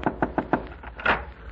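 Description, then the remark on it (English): Four quick, evenly spaced, moderately loud knocks on a wooden door to rouse a very hard sleeper, followed by a softer muffled thump or shuffle behind it. “You knocked for a minute already.”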